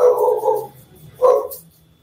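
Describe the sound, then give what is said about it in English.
Dogs bark twice, a long harsh bark followed by a shorter one after a brief pause, loud, with no talking. “My dogs agree.”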